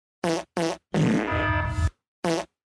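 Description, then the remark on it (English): Loud fart noises remixed into a rough beat: two quick identical blasts, a long buzzy sputter, then one more short blast after a pause. No voices. “Kenya, you've been a member for 17 months and all you want is some Ito fart noises.”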